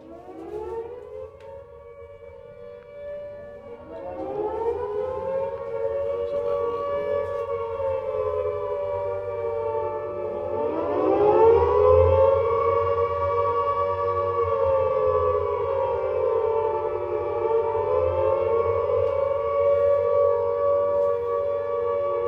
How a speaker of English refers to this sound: So the air raid warning sirens have gone off and everyone will make their way to the shelter.